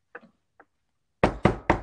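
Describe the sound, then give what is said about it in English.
A few faint taps, then three loud knocks on a wooden surface in a quick, even rhythm. No voices. “So far, knocks on wood.”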